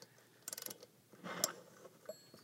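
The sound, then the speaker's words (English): Quiet ratcheting of an antique mechanical alarm clock being wound, a quick burst of rapid clicks followed by a grinding turn and a few scattered mechanical ticks and clacks. “I wound it for quite a while”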